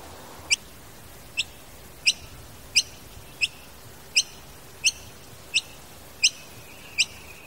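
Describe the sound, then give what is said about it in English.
Noisy miner calls, from a gray bird: a steady series of about eleven sharp, high chirps, evenly spaced less than a second apart, ringing out clearly over a low background hiss with no one talking. “As it happens, the school grounds also receive plenty of visits from a gray bird known as the noisy miner.”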